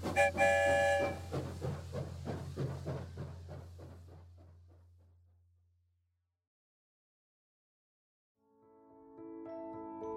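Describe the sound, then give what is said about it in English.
A train rolls along the tracks with a steady clickety-clack and a low rumble, starting after a brief horn blast and fading away into silence before a new sustained tone begins. “Down the tracks we go, back to the Pflugerville station.”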